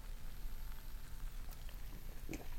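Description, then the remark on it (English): Someone sips a fruity, tart beer from a glass, amid a soft, steady fizzing crackle and a few small wet clicks, with a brief slurp near the end and no talking. “Well, why don't you sip first? All right. Cheers. Everybody cheers.”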